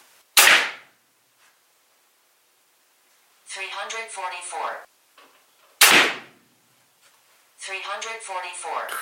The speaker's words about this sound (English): We're gonna shoot three arrows to the chrono and we'll put that up on YouTube. But right now we're gonna take our first shot and it's supposed to be at 350 and we'll see where we're at.